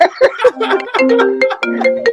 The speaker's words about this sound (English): Oh, man. Turn off your phone